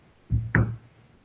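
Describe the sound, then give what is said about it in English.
Two quick knocks on a wooden surface, fairly loud, the second following about a quarter second after the first, each with a short hollow resonance. “Knock on wood.”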